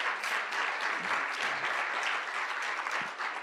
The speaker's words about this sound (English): Come on, let's give God a round of applause. It's way too quiet in here.